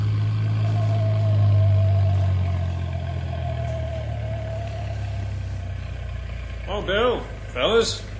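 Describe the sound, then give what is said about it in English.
A truck engine idles with a steady low rumble and a faint droning hum, the rumble strongest early on; brief voiced sounds come in near the end. “You better meet the truck outside of town at Beaver Creek School instead of the town limits like we usually do.”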